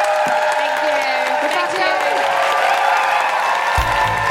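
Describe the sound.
A crowd gives a loud, sustained round of applause, dense clapping mixed with cheers and whoops, holding steady for several seconds with a voice breaking in near the end.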